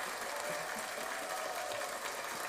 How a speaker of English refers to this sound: Round of applause for music and everything. Word.